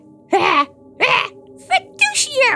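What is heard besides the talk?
sneeze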